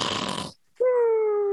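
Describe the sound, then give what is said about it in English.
A voice imitates the loud cartoonish snoring of a Christmas Santa toy, sitting back in a chair, that snored when shaken: a harsh, rattling inhale, a brief pause, then a long, steady whistling exhale that slowly drops in pitch. One snore cycle, alone. “If it shook or something, it would loudly snore. It was Santa sitting back in a chair snoring.”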